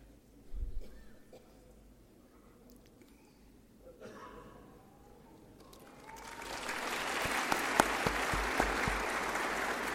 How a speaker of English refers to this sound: And those applause were for those that are here for the very first time at KwaSizabantu.